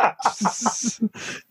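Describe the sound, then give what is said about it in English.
Heavy, forceful breathing out through the nose, a hissy snort in two close bursts with a rhythmic pulsing edge, like a person imitating a charging bull. “That's actually breath coming out my nose like the bull in like fucking all the cartoons.”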